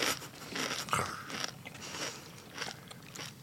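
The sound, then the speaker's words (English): Crispy, slightly spicy fried chicken crunching as someone bites and chews, a dry crackling series of bites with short pauses between, no one talking. “Got a really crispy bit here. Yeah, crunchy, a little bit spicy, but not overpowering, to be honest.”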